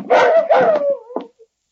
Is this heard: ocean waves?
no